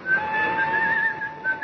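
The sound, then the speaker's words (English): A man whistles a tune as he makes his way through the weekend crowds of Waterloo Station on a fine, clear day, a steady, high, clear line that wavers slightly in pitch, over a soft background murmur with no speech. “A calm, gay Jim Hudson made his way, whistling as usual, through the weekend-bound crowds of Waterloo Station.”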